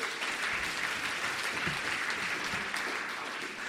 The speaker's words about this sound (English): of applause for the song, please.